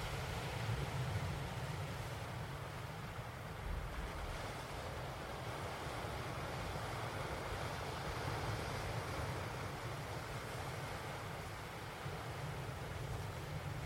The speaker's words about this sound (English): It's always good to take a moment to stop. So let's just listen to the sound of the waves for a minute.